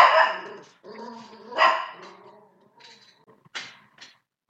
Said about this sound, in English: Guard dog is on duty.